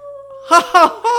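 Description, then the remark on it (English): A dog lets out a drawn-out, wolf-like howl, a steady tone followed by several louder, wavering bursts, clear with no talking over it. “That's how the wolf...”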